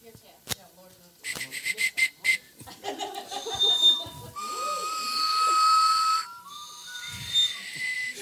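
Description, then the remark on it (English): A crowd blows hummer whistles together, producing a shrill, buzzing chorus of sustained high tones that waver and overlap, with scattered laughter and chatter mixed in beneath. “It's a hum. So it's more like a whistle.”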